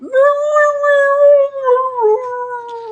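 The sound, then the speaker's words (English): A voice imitates a creature's piteous howl of pain as it is shaken awake: one long, loud, wavering whine held for about three seconds, sagging slightly lower toward the end. “All right, you shake it awake, and it starts making piteous howls of pain.”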